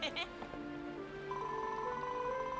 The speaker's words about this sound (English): The sound of the bell has summoned some more people. Our farm just keeps growing and growing, says Rosie.